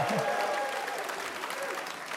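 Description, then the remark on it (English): Steady, dense applause from a packed-house audience at the Museum of Commerce in downtown Pensacola during a Radio Live show, a continuous wash of many hands clapping at once with a faint murmur of voices mixed in, holding at an even level throughout. “There are literally thousands of people in the museum tonight. At least it sounds like it anyway.”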